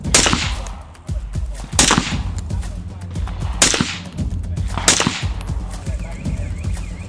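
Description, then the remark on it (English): Four sharp shots from a rifle fired in semi-automatic mode by a student at a shooting range crack out one at a time with uneven gaps of a second or two, each loud, leaving a brief echoing tail. “Switch the selector from safe to semi, and you can fire when you're ready.”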